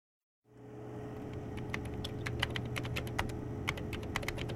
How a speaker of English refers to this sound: I have to finish typing out this post.